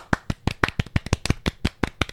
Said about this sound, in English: Yeah, so a little round of applause for my special sponsor.